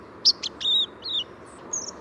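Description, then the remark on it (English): A young white-throated sparrow, hatched the preceding summer, tries out subsong in the fall: a loose, irregular jumble of thin, high whistled notes, some slurred and wavering, sung over a soft background hiss with no voices. “Inexperienced young birds, hatched during the preceding summer months, sometimes begin with disorganized jumbles of notes, known as subsongs.”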